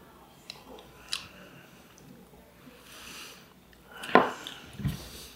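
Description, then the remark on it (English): A quiet sip of tequila from a glass: a few faint clicks, then one short, sharp slurp near the end followed by a soft low thump, with no talking. “I guess I'll give it a second sip just to...”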